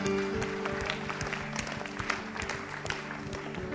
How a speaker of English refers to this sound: Let's give him a great clap.